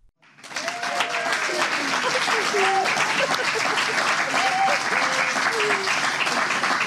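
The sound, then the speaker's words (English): A crowd at an Abbey Theatre talk breaks into steady, sustained applause that starts abruptly and holds at a constant loud level, with scattered voices and a few whoops or calls rising over the dense clapping. “Just as you guys clapped, two girls in the front row headbutted each other, which is a great way to start.”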